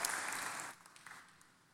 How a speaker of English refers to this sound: Amen. Yes, you can clap for Jesus for that.